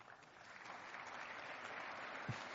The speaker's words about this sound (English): Hesitant applause. Did anybody notice the discrepancy there? This is call of Congress, all of the Senate, and some of them, obviously, the few claps were from the Democrats, from the humanitarian Democrats, right, the so-called anti-war party.